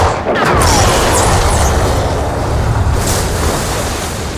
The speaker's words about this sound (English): With the orca sinking, Brody climbs to the highest part of the mast with the rifle. He fires at the air tank in the shark's mouth in the last desperate attempt to kill the shark.